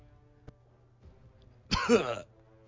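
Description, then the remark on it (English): A voice imitates a man coughing up blood: one short, gurgling, throaty burst lasting about half a second, moderately loud against near silence, preceded by a faint tap. “coughs up blood, slumps over, drops his staff.”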